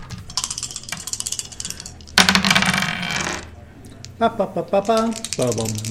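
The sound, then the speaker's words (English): Dice clatter and tumble across a hard tabletop in a quick burst of hard rattling as players roll for a vigilance check in a tabletop role-playing game, followed by a brief moment of people talking. “Look at all these rolls. Okay, make your vigilance roll. We just did.”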